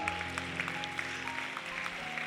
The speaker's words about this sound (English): Can we clap as these people come?